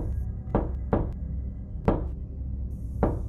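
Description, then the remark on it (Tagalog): Four slow, dull knocks of a fist on a wooden door, unevenly spaced with long pauses between them, over a low, steady background rumble. “Parang dibilang ang bawat pagtatama ng kanyang kamao sa dekahoy kong pintuan.”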